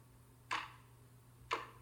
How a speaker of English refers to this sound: The silence was interrupted by the ticking of a wall clock.